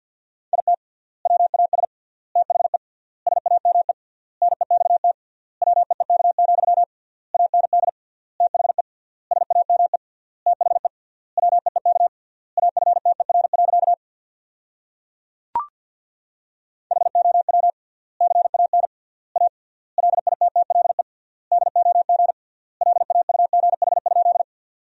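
Rapid Morse code practice tones at 50 words per minute with 3x word spacing, sending sentences built from the 500 most common words: a single steady mid-pitched beep keyed in fast dots and dashes, grouped into words with gaps, with a brief click midway and no voices.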